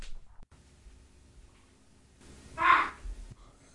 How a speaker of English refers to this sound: I think it's the bird on the roof.